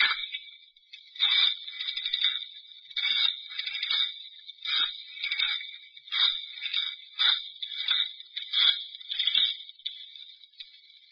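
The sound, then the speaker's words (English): A telephone being dialed: a steady run of high, bright, ringing bursts, roughly a dozen evenly paced pulses over several seconds, with no voices. “I've got to phone the place.”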